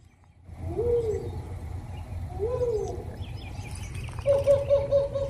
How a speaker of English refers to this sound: I'm getting bird calls. Cuckoo!